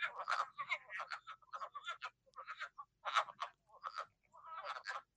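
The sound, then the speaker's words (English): A wood frog chorus, the first frog heard in spring, of hoarse, duck-like clucking croaks, repeated in quick irregular bursts with brief pauses between them, clear with no voices. “And that is the wood frog.”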